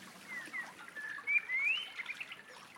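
Woodland birds, in a background recording by Hannah Tribe, sing softly, with a few thin, high chirps and short rising whistles standing out over a steady airy hiss. No one speaks.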